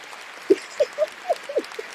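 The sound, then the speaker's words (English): A short burst of canned crowd applause played from an applause sound-effect button: a steady wash of clapping with several brief whoops or cheers popping through, at moderate volume and with no talking. “Oh yeah, let's put the applause button on, guys,”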